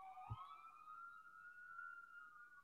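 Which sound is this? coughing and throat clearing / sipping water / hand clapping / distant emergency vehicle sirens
distant emergency vehicle sirens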